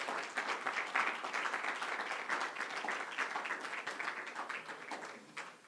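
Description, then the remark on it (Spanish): A church audience breaks into sustained applause for the Lord during a sermon, dense overlapping claps forming a steady bright roar that holds for several seconds before tapering slightly at the end. “¿Por qué no le da un aplauso al Señor?”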